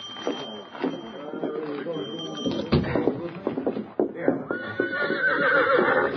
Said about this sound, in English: This is my horse. Steady, Victor. Steady, boy. Golly, sure's a fine horse.